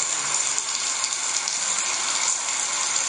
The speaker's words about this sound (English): It's a running shower. This is kind of my go-to right there.